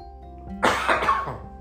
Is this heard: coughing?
yes